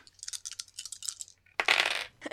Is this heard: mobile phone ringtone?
no